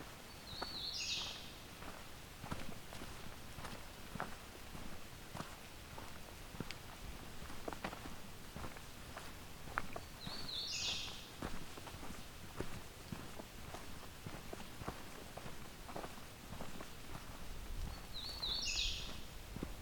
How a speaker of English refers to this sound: Another hooded warbler.